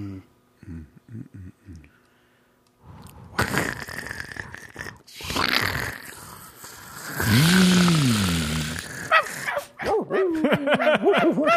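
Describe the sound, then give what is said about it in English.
Dogs bark and yelp in the distance in bursts, starting with a few faint muffled woofs, then louder rough barks and drawn-out whining howls near the end, with some noisy scuffling between them. “2 hours of dogs barking. In the distance, though.”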